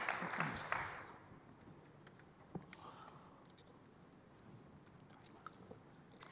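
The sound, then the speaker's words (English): An audience applauds in a dense, crackling wash of many hands clapping, strongest in the first second, then settling into steady, fairly quiet applause with a few sharper claps, and no talking, as a speaker from Avis Budget Group is invited on stage. “Let's give him a huge round of applause.”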